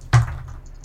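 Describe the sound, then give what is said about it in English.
Two six-sided dice (D6s) are rolled: a single sharp clack as they strike a tabletop, followed by a short low rumble that fades quickly. No one speaks. “Oh, my dice are so loud.”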